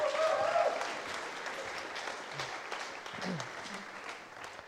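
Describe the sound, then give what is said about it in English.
An audience claps together in steady, dense applause, welcoming a speaker to the front, that holds for several seconds at moderate volume, with a brief voice audible at the start and the clapping tapering slightly near the end. “Would you give her a round of applause as we welcome Rebecca to the front?”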